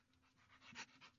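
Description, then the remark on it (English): A female pit bull pants rapidly and rhythmically, a quick series of breathy huffs, with one stronger puff near the end and no voices; she is tied up and eager to get out of her kennel. “let's just hear her. She's quite a loud doggy.”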